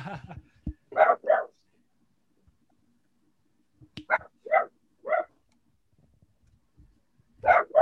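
A dog barks in short bursts, two quick barks, then a run of three after a pause, and another pair at the end, sharp and fairly close with quiet gaps between.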